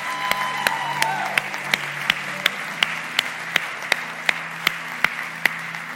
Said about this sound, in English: We're so happy for them and all that God has done. Come on, give her one more hand clap. Come on.